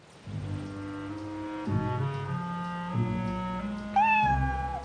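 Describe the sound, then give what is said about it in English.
A cat gives a single clear meow near the end, rising then trailing off, over steady sustained low musical tones that shift pitch a few times. No one speaks. “Come on, kitty. Let's go in the house.”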